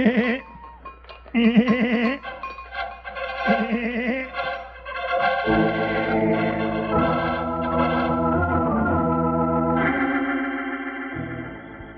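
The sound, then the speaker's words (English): A man imitates a goat, bleating in several quavering, wobbly bursts, then the steady ringing tones of a bell take over and continue to the end, fairly loud. “You keep sounding like a goat and let that bell ring.”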